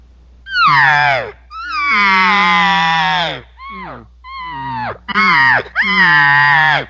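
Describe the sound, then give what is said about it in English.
A human voice imitates a cow elk's contact call: six nasal, whiny mews with rich harmonics, some long and drawn out with falling pitch, others shorter and more urgent, separated by brief pauses. “they'll go to that little bit of a contact buzz where she's trying to regather not only them or maybe even other elk”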